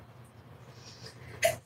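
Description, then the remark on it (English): A single sharp sneeze bursts out near the end after a stretch of low background hum, fairly loud, with no talking around it. “Bless you. Jesus, what's going on with your nose?”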